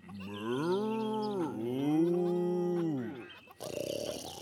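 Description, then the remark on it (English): A cow on a farm moos twice in a row, two long, drawn-out, loud calls, followed by a short burst of noisy rustling at the end. “Farmer Hen heard the mooing and said, Now the snore's over by the cows.”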